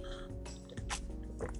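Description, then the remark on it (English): A person takes a couple of quick, wet sips of tea, soft slurping and swallowing sounds over a steady low hum, with no talking. “Pardon me as I sip my tea.”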